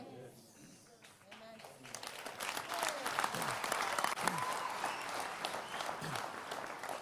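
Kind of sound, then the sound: crowd, audience clapping hands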